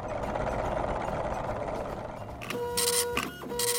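The Math-O-Matic Machine, a math machine on the Grabstack Radio Show, whirs steadily, then a burst of bright, buzzy printing with a couple of sustained tones as it prints out its answer. No one speaks.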